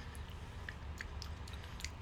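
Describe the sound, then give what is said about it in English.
Quiet chewing of a dry, dense, chalky RX bar snack bar with dark chocolate, peanut butter and jelly, with soft sticky mouth sounds and scattered small clicks over about two seconds. No one speaks. “It just tastes like powder. Just keep chewing it.”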